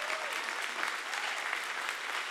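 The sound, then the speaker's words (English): An audience claps steadily as a prayer to follow Jesus, a dense wash of many hands at an even, moderate loudness throughout, with no voices rising above it. “Come on, clap your hands if that's your prayer today.”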